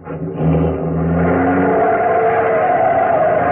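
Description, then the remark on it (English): A taxi engine revs up and accelerates hard, its rising drone steady and loud from start to finish, with harmonic tones climbing as it speeds away. “Driver, start going. I don't care where, only make it fast.”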